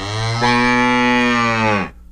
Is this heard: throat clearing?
no